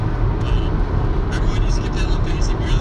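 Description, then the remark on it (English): Steady, heavy low-end rumble of road noise from inside a moving car, loud and continuous throughout, with faint muffled voices barely audible beneath it. “Yeah, if we just stop talking, it's pretty loud by itself.”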